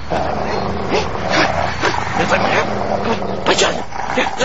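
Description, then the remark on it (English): A dog growls and barks in a steady, rough stream of snarling yips, loud, with people's voices mixed in underneath. “you don't know this dog. I don't think you should be doing that.”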